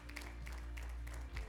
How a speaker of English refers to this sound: Come on, y'all give the Lord a hand clap of praise this morning.